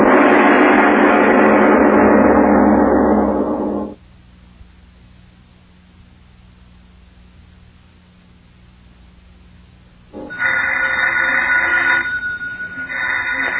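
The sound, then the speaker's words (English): A telephone rings loudly in two long bursts, a harsh jangling bell lasting a few seconds, then a pause of about six seconds before it starts ringing again. No one speaks. “Miss Goddard, answer the phone, please.”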